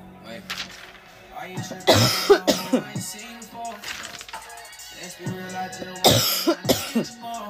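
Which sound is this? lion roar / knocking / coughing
coughing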